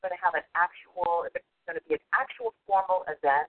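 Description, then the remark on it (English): A voice comes back over a tinny, band-limited phone line as an echo, repeating speech in short, choppy bursts with brief gaps between phrases. “An echo? That's like me talking, like it was me, yeah.”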